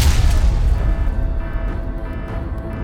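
A heavy crash-landing boom hits at once, loud, with a burst of noise that fades into a deep, lingering rumble. No one speaks.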